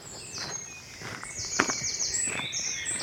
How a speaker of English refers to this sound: There's more than one wood warbler here.